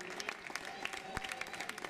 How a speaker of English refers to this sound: That's our applause.